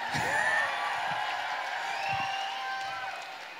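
A crowd cheers and applauds, a dense, steady wash of clapping with high whoops and yells rising over it, holding loud for the whole few seconds before easing slightly at the end.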